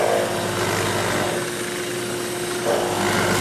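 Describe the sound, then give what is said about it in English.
A drill press whines steadily as it bores a giant hole through wood for a wooden truck's window, a loud, continuous motor drone with grinding cutting noise that eases slightly midway, then swells again near the end. “And then I have to drill this giant hole for the truck's window.”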